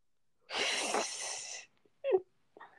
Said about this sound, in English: Sorry, I had to yawn.